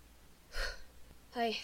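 Two heavy, gasping breaths a second apart, close and fairly loud, like someone panting hard and out of breath after running.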